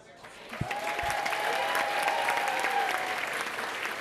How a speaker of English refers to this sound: Again, they all applauded and eventually turned to the farmer, who stood slowly and shrugged his shoulders.